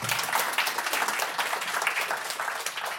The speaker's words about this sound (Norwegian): Så gi dem en applaus da, dere.